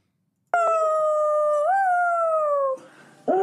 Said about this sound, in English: I mean, speaking of banging vocal performances, I think I found the video of the most soulful dog who's ever lived. Are you ready for this?